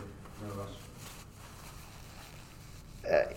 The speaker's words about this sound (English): Sorry, I'm just going to blow my nose actually.